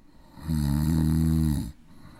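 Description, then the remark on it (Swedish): A single loud snore lasting about a second, a deep rumbling drone that swells in, holds steady, and cuts off sharply, with quiet background hiss before and after. “Så min är ju vid första snarkningen stäng av.”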